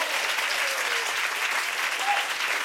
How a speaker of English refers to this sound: What you are applauding there is a man's painful recovery from his own incompetence.